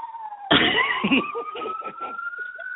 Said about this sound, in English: And there's the siren. Sorry.